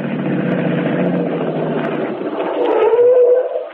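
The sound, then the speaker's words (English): A car engine runs with a steady rumble, kept running while someone waits in the car, then swells louder near the end as its pitch climbs slightly, as if revving. No one speaks. “Want me to stay in the car? That's right. Keep the engine running.”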